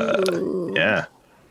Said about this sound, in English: Belching. I'm a great belcher. Really? Yeah, like I remember belching the ABCs once all the way through.